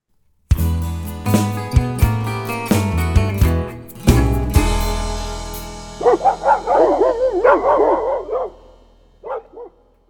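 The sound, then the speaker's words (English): A few strummed musical chords ring out, then hound dogs bay and bark in a burst of several warbling, howling, loud calls, ending with one last bark. “Well, my listening crew, them hound dogs are barking.”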